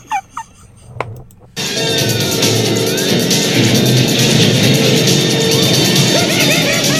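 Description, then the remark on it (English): After a brief quiet stretch with a few short squeaks, a truck engine suddenly roars up loud as a man drives the truck, revving steadily for several seconds with high chirping and squealing noises mixed in. “Why is my guy driving the truck over here?”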